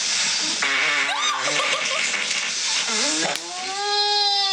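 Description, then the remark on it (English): Several loud squeaky farts in a row from a person asleep, recorded by a sleep-talk recording app, each with a wavering, almost bleating tone, ending in a long steady high-pitched one, with no talking. “I put together a bunch of clips of people farting in their sleep from this app that records your sleep talks.”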